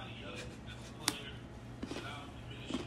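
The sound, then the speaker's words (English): Crisp, dry crunching of a flat, graham cracker shaped banana plank flavored cookie: one sharp bite followed by a few softer, irregular crunches over a quiet, steady background hum. “She's crunching it right now.”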